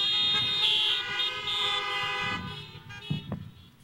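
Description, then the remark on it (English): Several car horns honk together in a sustained, overlapping blare, loud, with a few short extra toots and some low rumbling noise near the end. “If you believe that, honk your horn.”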